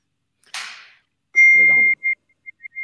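A sharp, noisy burst, then a steady high-pitched electronic beep followed by a few short, quick beeps, a very loud phone text message notification, with a brief murmur of voice under the first tone.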